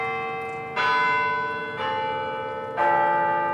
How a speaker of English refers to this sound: To be clear, this new piece won't replace the Westminster chimes. You know the one. It's a classic that rings through Denver's Civic Center Park every 15 minutes.